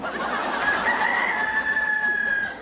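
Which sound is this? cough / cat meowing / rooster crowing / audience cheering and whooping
rooster crowing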